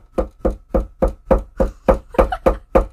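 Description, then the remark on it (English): Rapid, heavy pounding with a hammer on the wooden door of an apartment in the middle of a city: about ten loud, evenly spaced blows in quick succession, insistent, with no voices. “You open the door, almost get with a fucking hammer.”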